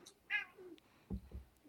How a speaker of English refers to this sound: It sounds like your cat told you to hurry up.